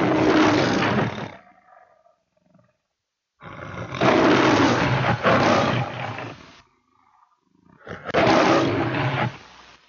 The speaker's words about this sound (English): Tell me the name of the studio that uses Leo the Lion. MGM. That's correct. And the first movie was White Shadows on the South Seas. It was the first talking picture for MGM, Metro-Goldwyn-Mayer.